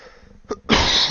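A brief soft sound is followed by one loud, harsh, raspy cough that bursts out and holds its force for about half a second. No one speaks.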